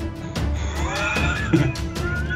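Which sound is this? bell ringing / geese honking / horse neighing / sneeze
horse neighing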